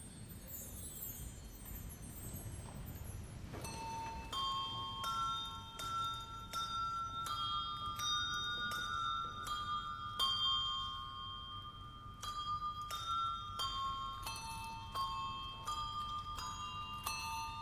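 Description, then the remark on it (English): The hymn tune Veni, Veni, Emmanuel rings out slowly on bells, each struck note sustaining and overlapping the next in a steady, stately rhythm, heard clearly over a low background rumble with no voices. “But perhaps in this first excerpt, I'd like to play this Veni, Veni, Emmanuel tune on something like bells here.”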